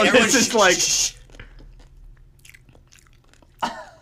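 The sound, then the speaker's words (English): A loud crunch as a woman bites a crisp pickle, followed by quiet wet chewing clicks and a second sharp crunch near the end. “She's gonna go in for another crunch.”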